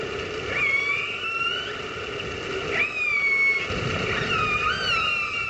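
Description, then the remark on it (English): Killer whales calling to each other underwater, recorded with a hydrophone and broadcast live on Orca FM, run by Vancouver Aquarium in Canada: several squealing, rising harmonic calls overlap against a constant rumbling hiss of hydrophone background noise, with no voices present. “No presenters, no music, just the sound of killer whales calling to each other.”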